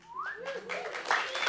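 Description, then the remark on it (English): An audience at a live storytelling event at Bumpport Theater in Denver, Colorado, breaks into applause, a wash of steady clapping mixed with a rising whistle-like whoop and scattered cheering voices, lasting briefly at a moderate level. “That wasn't even an applause line.”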